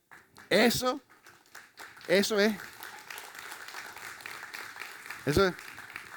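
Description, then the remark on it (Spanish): Scattered, hesitant applause from an audience, thin and uneven rather than a full ovation, with a few short voiced calls rising above the patter. “Ese fue un aplauso confundido, ¿no?”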